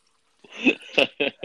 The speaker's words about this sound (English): Are you peeing or getting water? That is me getting some water.